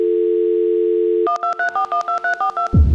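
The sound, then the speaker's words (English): A steady dial tone hums for about a second, then a quick run of eight or nine short dialing beeps in a regular rhythm, clear, ending in a brief click, as a phone call is placed. “But I thought I'd get him on the phone now.”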